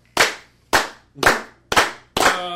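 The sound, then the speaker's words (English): A group claps in unison, five loud, sharp claps at a steady, slow beat, each with a brief ringing tail, imitating centaurs banging their spears against their shields. No one speaks. “The centaurs start taking their spears to their shields.”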